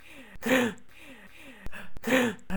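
Close, audible breaths, sharp inhales and sighing exhales, chopped and looped in an edited rhythm, with abrupt cuts between repeated breathing bursts and no speech.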